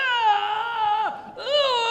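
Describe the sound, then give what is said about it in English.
A voice imitating the screams of people in hell while telling a story: two loud, drawn-out wailing cries, the first sliding down in pitch before a brief break, the second rising back up and holding steady. “Ah! Ah! They're screaming like this.”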